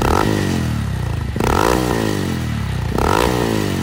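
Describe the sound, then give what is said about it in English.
A Honda Monkey small motorcycle engine revs loudly, its pitch climbing and dropping in three repeated surges with brief breaks between them, like shifting through gears. No voices are heard. “It's a funny sounding name, but a great little motorcycle. We're talking about the Honda Monkey.”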